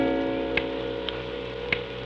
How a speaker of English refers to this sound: The great clock whirred and struck again, probably for better hours.